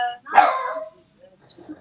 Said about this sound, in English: You got, well, Poochie's barking.